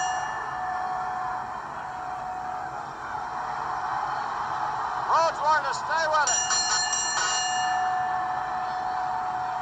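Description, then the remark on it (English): A wrestling ring bell clangs in a quick run of repeated strikes partway through, loud and metallic, rung as the referee stops Dusty Rhodes' match, over a man's commentary and steady crowd noise. “Referee says ring the bell.”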